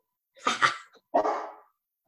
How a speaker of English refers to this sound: That's Cello. He's here. Hey, Chris, Cello the dog. Woof, woof.